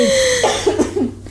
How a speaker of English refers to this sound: I have a cough attack.